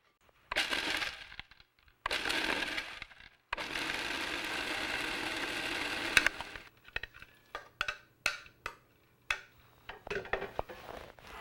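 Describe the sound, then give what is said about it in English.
A food processor whirs loudly in three bursts, the last one longer, then breaks into a string of short, sharp pulses on the pulse button as nuts and cheese rattle and chop against the blade into a crumbly picada topping. “If you tend to be an over-processor, like I do sometimes, use your pulse button.”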